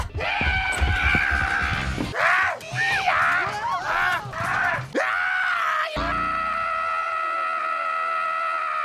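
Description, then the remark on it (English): A woman in a film screams loudly and almost continuously, her shrill cries wavering up and down in pitch before settling into one long, sustained piercing shriek. “From that point on, most of the dialogue is screaming.”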